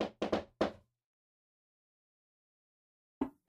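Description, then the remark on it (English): A few quick, light knocks on a door, then a long silence, then two more soft raps. The knocking is quiet, with no voices. “As this all is going on, you suddenly hear a light knocking on the door.”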